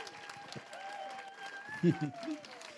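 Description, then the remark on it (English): A church audience claps in a steady, fairly soft patter throughout, applauding the announcement of a new worship pastor, with a short voiced cheer rising over it near the end. “You can clap.”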